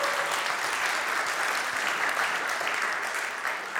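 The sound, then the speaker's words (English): An audience applauds the announcement of a newborn baby boy born on 30 December, a dense, sustained wash of clapping from many hands that holds at an even loudness throughout, with no voices standing out above it. “Why don't we give a round of applause for that?”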